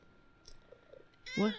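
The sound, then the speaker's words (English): A single loud meow from a cat named Tara Jr. rings out near the end, following a quiet stretch with only faint background rustling and a few soft, muffled sounds. “We got the cat cam.”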